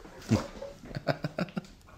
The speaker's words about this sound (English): So Joy barks when there are people on the road and then Happy barks at Joy. So it's not, those aren't happy barks. Those are like, who's that? Well, Happy can't see what Joy's barking at.